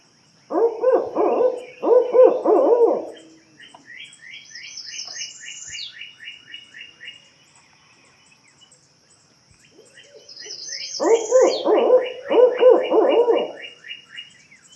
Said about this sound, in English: Take the barred owl, for example, which says, "Who cooks for you? Who cooks for you all?" Well, that was a little bit embarrassing, but why don't I let you hear the actual clip?